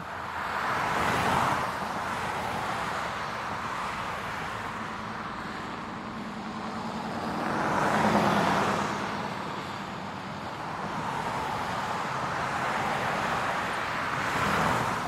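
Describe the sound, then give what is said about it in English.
Steady road traffic rumbles past, with broad swells of passing vehicles rising and fading every few seconds over a constant whooshing roar, no voices present. “Imagine right now that there's traffic around you.”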